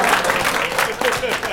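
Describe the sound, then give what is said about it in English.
Brief burst of audience applause in response to a photo of a toddler at Disneyland. A steady wash of many hands clapping at fairly high loudness, with some voices mixed in. “Had to get some cheap applause for that.”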